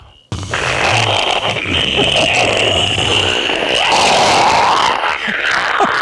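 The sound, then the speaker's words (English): A rocket liftoff roar erupts abruptly and holds steady for about six seconds, a loud, dense rumble with crackling hiss across the whole range and a low droning tone early on. “We have liftoff.”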